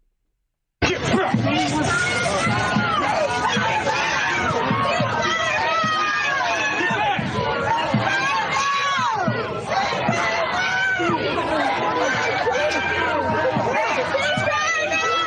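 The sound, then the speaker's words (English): A large protest crowd screams and shouts at once while trying to fight with police, a dense, loud wall of overlapping voices with sharp yells rising out of it, steady from start to finish. “They're screaming. They're trying to fight with cops.”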